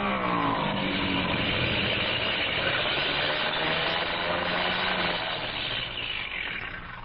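An aircraft engine that has been acting up roars loud in a steady, droning hum, then eases off slightly near the end as the plane comes in fast to land.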